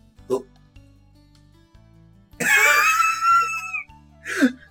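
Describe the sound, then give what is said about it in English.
A man coughs a bit after swallowing whiskey: a short cough, then a long, strained, wheezy gasp, and another sharp cough, with no talking. “Like coughs a bit. He's trying not to laugh.”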